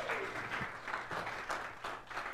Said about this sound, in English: Give him applause. Go sit down.